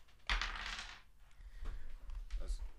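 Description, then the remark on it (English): A loud rattling burst as dice are shaken in a hand during a dice game, followed by a few sharp clicks as they tumble and settle, with faint background noise. “is rolling the dice right now.”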